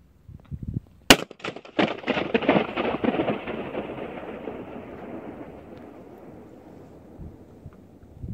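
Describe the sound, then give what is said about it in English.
A single sharp balloon pop by audio engineers bursts out, then a long rumbling echo rolls and swirls through a power-plant cooling tower in Washington, fading slowly over about five seconds. A few soft thumps come just before. “So inside of a cooling tower that was supposed to be powerful, that was supposed to power hundreds of thousands of homes in Washington, now the only thing that happens there are echoes from audio engineers popping balloons.”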